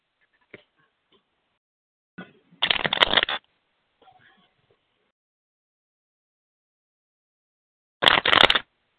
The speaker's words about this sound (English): what I'm going to do is I am going to shuffle some cards, okay, honey? And then I'm going to tune in and... I want you to tell me when to stop shuffling these cards, okay?